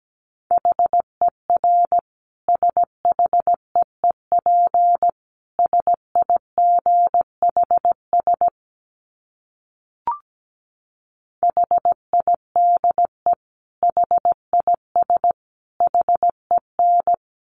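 Morse code beeps at a steady 17 words per minute: a single mid-pitched tone keyed in short and long bursts, broken by a pause of a couple of seconds with a brief click, then resuming.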